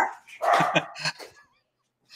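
A dog barks several times in a quick burst, sharp and fairly loud, then goes quiet, with a faint trailing whine.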